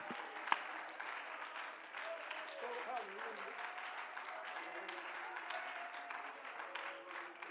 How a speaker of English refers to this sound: Would you clap your hands and praise the Lord tonight?